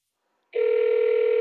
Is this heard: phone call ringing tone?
yes